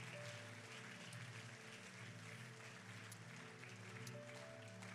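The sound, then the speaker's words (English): A church audience applauds their pastor steadily for several seconds, a dense wash of many hands clapping together, with sustained low keyboard or organ tones underneath. “Give your pastor a big round of applause today.”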